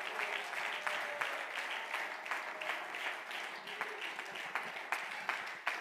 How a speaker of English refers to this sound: Clap your hands and praise Him again today.